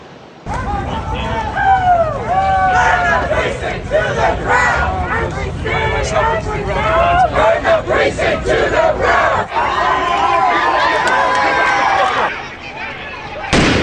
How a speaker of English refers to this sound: Over the weekend, you saw a lot of people proudly shouting about their abortions at pro-choice riots all over the country. Here's what Washington, D.C. and Los Angeles look like.